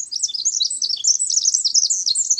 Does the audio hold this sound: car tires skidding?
no